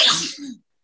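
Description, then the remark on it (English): A single sharp sneeze, fairly loud, bursting out with a hissy rush of air and a brief voiced tail before cutting off into silence. “Bless you.”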